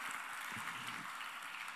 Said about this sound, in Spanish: Está bien que aplauda porque nos alegramos que lo ha hecho con nosotros.